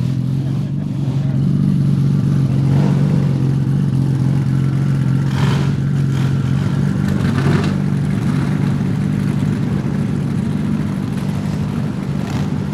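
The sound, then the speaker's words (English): A big car drives steadily along a narrow lane beside a flint wall, its low, constant rumble of engine and road noise continuous, with a few brief rustling scrapes and no talking. “you get to the Flint Wall and it starts to get a bit narrow, and it's a big car, so you're quite cautious.”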